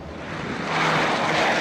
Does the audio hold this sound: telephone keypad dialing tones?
no